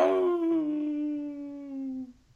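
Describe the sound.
A single drawn-out wolf-like howl from a human voice imitating a wolf, fairly loud, holding a steady tone that slowly sinks in pitch before cutting off, with no other sounds.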